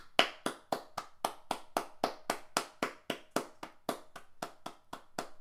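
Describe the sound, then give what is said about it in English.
A steady run of sharp hand claps, a round of applause for the winner of a quiz who scored 6 out of 6, about four per second, crisp and fairly loud, keeping an even rhythm for several seconds with no voices. “Unfortunately, I have nothing to give you except a round of applause.”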